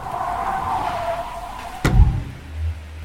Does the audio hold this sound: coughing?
no